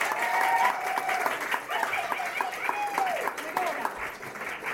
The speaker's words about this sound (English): Thank you for sparking the debate. A round of applause for both of our conversations.